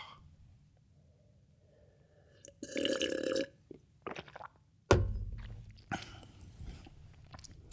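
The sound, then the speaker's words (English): Someone takes a sip of water: a drawn-out slurp, a few short gulping swallows, then a sudden knock followed by wet mouth noises, with no talking. “So yeah, figure it out, scream it out while I have a sip of my water.”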